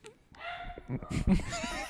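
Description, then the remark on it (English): A nearby dog barks in a short, excited burst, its whiny, high-pitched yelps running throughout, with a voice talking faintly underneath. “Podcast dog noise that we play right when we're about 10 minutes from being done.”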